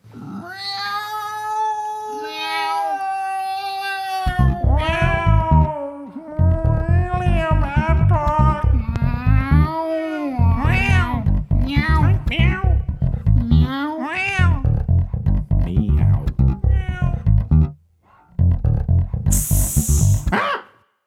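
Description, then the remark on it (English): A cat named Atticus meows over and over for about twenty seconds, loud, with long drawn-out wavering cries giving way to a rapid string of shorter meows and a brief pause near the end. “And I think it's only fair, having seen a lot of the stuff that Bill posts on Facebook, that we co-dedicate this to his cat, Atticus.”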